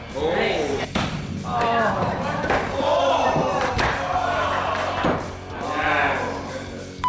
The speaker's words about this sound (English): I'm about to inflict some serious pain on this hard board.